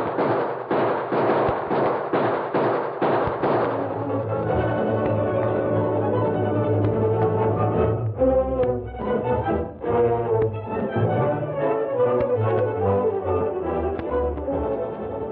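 gunfire

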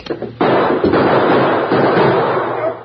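gunshots

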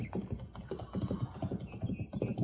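horse hooves approaching

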